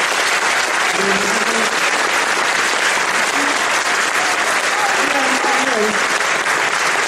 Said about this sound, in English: Special round of applause for the moms that have been standing to keep their babies calm.